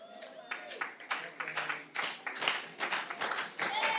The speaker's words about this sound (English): They're clapping for themselves. I love it.